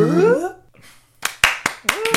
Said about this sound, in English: Yay. And that's our segment where we clap for each other. Yeah, I mean, it's kind of like a compliment zone where we're just saying, oh, I applaud you.